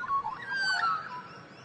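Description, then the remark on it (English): An Australian magpie warbles a short run of bright, fluting whistles with shifting pitch, steady over a faint background hum, with no voices. “we delve into the story of the beloved but hated bird.”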